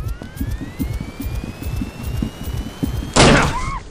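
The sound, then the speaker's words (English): A door is struck with one loud, heavy crash near the end, preceded by a steadily rising high whine over low rumbling, with brief falling electronic tones after the hit. “Now. Striking door.”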